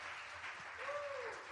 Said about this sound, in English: Can you clap your hands once again into the wonderful name of the Lord Jesus?